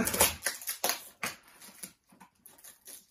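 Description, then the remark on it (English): A man opens a cardboard box by hand, without scissors or pen: a run of sharp, irregular tearing and scraping bursts, loud at first and then softer scuffs and rustles, with no talking. “I hope you're enjoying this episode of Man Opens Box without scissors or pen or anything.”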